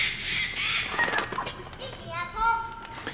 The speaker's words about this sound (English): Did you hear that bird?